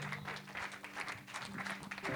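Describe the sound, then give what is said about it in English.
A church audience applauds as a hand clap to the Lord, many hands clapping steadily in a dense, continuous wash, with a sustained low musical tone humming underneath. “Why don't we give a hand clap to the Lord one more time?”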